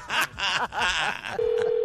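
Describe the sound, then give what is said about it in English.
Telephone tones sound as a prank phone call is placed: after a burst of lively voices or laughter, a steady, fairly loud electronic tone holds for the last half second. “Prank phone call.”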